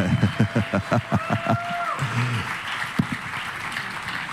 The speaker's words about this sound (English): And so would you help me welcome our panelists, our pastors here? Maybe you can clap a little bit longer. There we go.